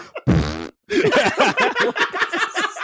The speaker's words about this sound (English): He always got farts. Makes it worse.